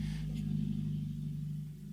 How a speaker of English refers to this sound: Okay, motorcycle guy. That was a truck, dog. It was not a motorcycle. It was a car with no muffler.